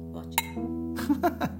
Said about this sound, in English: How about wine we do a cheers? Let's do a cheers.